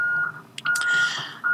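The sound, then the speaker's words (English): A lorry coming up outside sounds a steady, high electronic beeping tone that breaks off briefly, with short hissy bursts and a low engine rumble underneath. No one speaks. “And that is a lorry coming up.”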